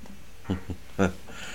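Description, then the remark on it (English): A cat meows in short bursts: two brief chirpy calls followed by a louder, drawn-out meow, over a quiet background. “Hi everyone, as you can see, I'm having a moment with my cat.”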